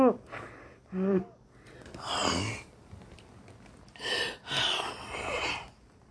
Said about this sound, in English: Excuse me for sniffing.